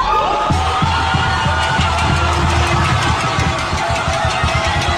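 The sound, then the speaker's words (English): A huge outdoor crowd of thousands outside the governor's mansion in Old San Juan roars and cheers continuously as people dance, with whoops, shouts and rhythmic banging or drumming mixed into the dense, loud celebration. “There was a crowd of thousands outside the governor's mansion in Old San Juan that erupted into cheers and dancing.”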